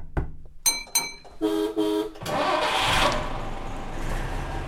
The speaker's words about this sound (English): Is a 1953 Bristol LS6G coach, formerly operated by Royal Blue in the West Country.